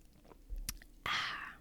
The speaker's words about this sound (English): I need a little sip. My Olipop. This shit is so good. So good.